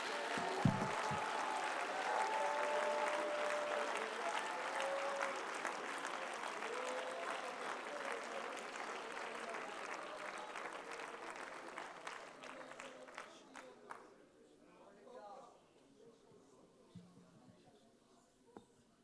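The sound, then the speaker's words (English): An audience claps hands and shouts to God in a dense, steady burst with some voices calling out, then the applause thins into scattered claps and fades out over the final seconds. “Would you clap your hands and shout to God one more time?”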